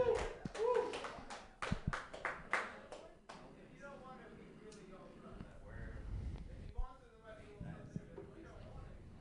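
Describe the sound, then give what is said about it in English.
A comedy show crowd breaks into a loud burst of applause for about three seconds, calling a man up to try comedy, then the clapping fades and scattered voices and murmuring take over at a lower level. “Round of applause if you guys want to see this guy.”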